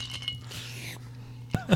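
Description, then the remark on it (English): Drinking glasses clink together in a toast: two bright, ringing taps, one right after the other, over a low steady hum with faint murmuring in the background. “Raise your glasses. And shake your asses. Cheers, boys.”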